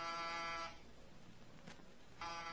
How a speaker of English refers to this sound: No answer to the door buzzer.